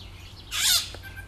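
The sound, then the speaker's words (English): A small finch-sized bird, about 5 centimetres long, gives one short, harsh, buzzy call lasting about a third of a second, with a faint chirp after it over a low background hum. “Lovely little bird. Cute. Just like the size of a finch.”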